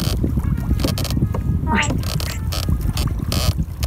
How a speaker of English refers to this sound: So we got a little 4-second clip here. We're going to watch it, and you'll hear the ambiance of the water and the waves